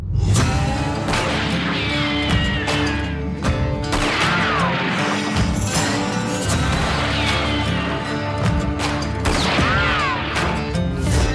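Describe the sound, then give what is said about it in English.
Twangy, upbeat country music plays steadily throughout, punctuated by a scattering of loud, sharp gunshot sound effects, bangs and cracks at irregular intervals, with no voices. “And this is the part where I'm going to insert some cheesy country music and some gunshots.”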